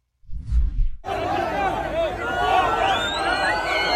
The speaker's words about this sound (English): Here you can see crowds of Palestinians jeering at, mocking women being released back into Israel after being held hostage for a month and a half.